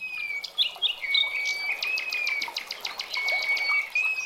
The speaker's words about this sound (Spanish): Los pájaros que allí retozaban parecían conversar entre sí.